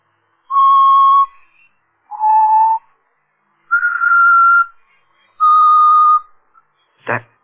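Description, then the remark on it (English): Someone whistles a slow tune read from sheet music: four long, steady notes with brief gaps between them, clear, followed by a single sharp click at the end. “He's always whistling it.”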